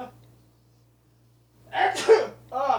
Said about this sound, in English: hold on one second. I got to sneeze.